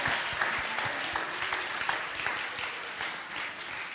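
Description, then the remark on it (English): A crowd claps steadily throughout, a dense wash of many hands at fairly even loudness with no voices standing out, holding for about four seconds. “Come on, give yourselves a round of applause.”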